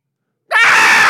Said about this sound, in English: Ah! I couldn't think of one. I just wanted to scream. Horrified. I just felt like screaming.